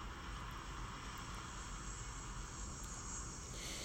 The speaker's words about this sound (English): Don't even worry about the plane. You just gotta get away from that plane zone.